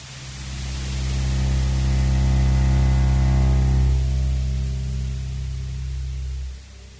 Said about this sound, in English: By 9:30 p.m., only the white noise from the television hung in the air.